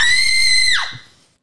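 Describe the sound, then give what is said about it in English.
A single loud, high-pitched scream held steadily for most of a second, then dropping in pitch and trailing off abruptly, heard alone without any talking. “Actually, that was a good scream, though.”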